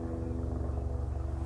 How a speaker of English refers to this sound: And now I'm on my porch. There's a helicopter flying over, you'll hear it.